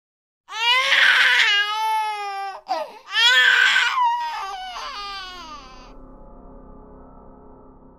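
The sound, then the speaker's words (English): A baby about 10 or 15 feet away cries in two long, loud, high-pitched wails separated by a brief catch of breath, the second trailing off into a quieter, fading tail with a faint low hum. “Almost immediately, the baby cried again, and it couldn't have been more than 10 or 15 feet away.”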